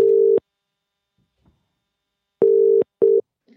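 A telephone ringback tone at steady pitch, heard as one burst, a long pause, then the classic double-pulse ring: two short buzzes close together, as a phone call is placed. Clear, with no voices.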